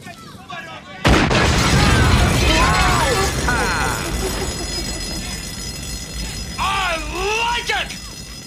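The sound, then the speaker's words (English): A sudden, loud blast from a Cobra assault cannon bursts in after a quiet second, then sustained heavy roaring noise rumbles on while wavering, voice-like cries rise and fall over it. “Cobra assault cannon, state of the art, bang bang.”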